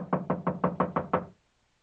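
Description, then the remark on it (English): Seven firm knocks on a study door in a quick, steady rhythm, fairly loud, followed by silence. No voices are heard. “Didn't you hear me knock?”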